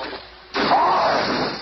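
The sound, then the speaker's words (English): A sudden loud crash erupts after a quiet lead-in as the Thing, in a frenzy, smashes months of research equipment in Reed Richards' lab, followed by a sustained noisy clatter and a faint rising tone that lingers for over a second. “And in his frenzy, smashes the end result of several months of research.”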